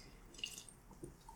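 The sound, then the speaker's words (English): A quiet sip of fizzy lime seltzer from a can: a brief soft hiss of bubbles and a few faint wet slurps, ending in one sharp, loud tap. No one speaks. “I'm just getting a waft of that lime right up in my nostrils. Let me take a sip.”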